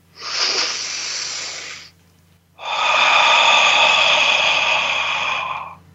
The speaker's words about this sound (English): So on the count of three, just begin a conscious, loving breath. One, two, three.